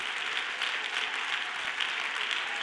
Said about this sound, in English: Somebody clap your hands like you believe it just happened.